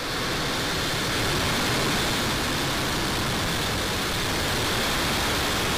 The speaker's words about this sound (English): SpaceX launched 48 more Starlink satellites on March 9th from Cape Canaveral. Time to let the American broomstick fly and hear the sounds of freedom. LD is go for launch. 5, 4, 3, 2, 1. Engine full power. And liftoff, Falcon 9, Falcon 4 10.